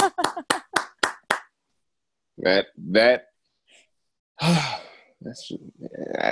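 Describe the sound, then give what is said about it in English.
One person claps their hands six times in a quick, steady rhythm, each clap sharp and bright, before the clapping stops and breathy vocal sighs and murmurs follow. “I'm clapping. I don't know if you can hear that.”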